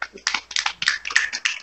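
human body sound, golf clap

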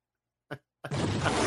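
sound effect, explosion sound effect

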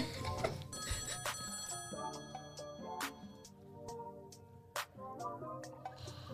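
signal or alarm, telephone ringing

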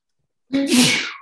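human body sound, sneeze

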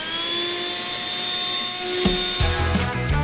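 household object, vacuum cleaner running

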